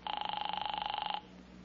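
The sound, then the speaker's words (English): A telephone rings in one loud, rapid trilling burst lasting about a second, then cuts off, leaving quiet with no one speaking. “Well, I'm going to phone her right now.”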